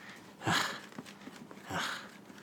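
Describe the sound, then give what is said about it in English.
Two heavy, breathy pants, each a rough rush of air, spaced a little over a second apart with quiet hiss in between and no talking. “Why bother the only one panting? Pant with me.”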